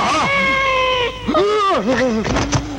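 A cat meows loudly: one long, steady drawn-out cry, then several shorter meows that rise and fall in pitch over about three seconds.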